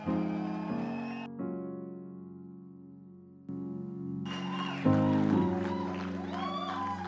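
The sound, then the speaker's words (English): Sustained organ-like music plays at a church service, then the audience, risen to its feet, bursts into loud clapping and shouting over it to welcome a bishop, the crowd noise filling the last few seconds. “With a hand clap and a shout offering, let us welcome”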